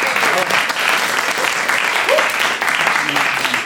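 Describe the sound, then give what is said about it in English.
An audience claps for the players at the end of the Bad Fear Off round, a steady, dense round of applause lasting several seconds, loud and even throughout, with a few faint voices mixed in. “Give them a round of applause there.”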